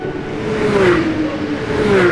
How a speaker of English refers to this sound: What sport is this? NASCAR racing! People who drive in NASCAR races drive special cars that are made to go super fast, over 200 miles an hour.